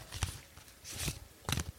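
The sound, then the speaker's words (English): Cards being shuffled: three quick, soft bursts of papery riffling and tapping, each with a faint low thump, spread over a couple of seconds with quiet gaps between. No one speaks. “I'm gonna get the first card out. Here we go. Shuffling.”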